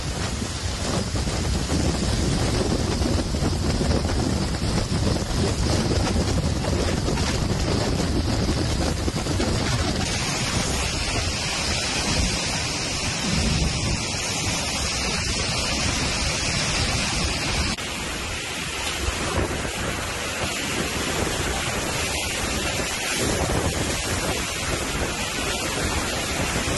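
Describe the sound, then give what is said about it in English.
Loud, constant roar of strong wind from an incoming hurricane buffeting the microphone, mixed with crashing surf, a dense wall of noise with no pauses and no voices throughout. “Here's some of the footage of the hurricane coming in right now.”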